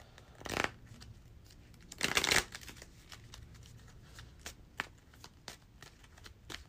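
An encounter deck of cards in a card game being shuffled, with two longer riffling bursts followed by a series of quick, light card taps and flicks; no one speaks.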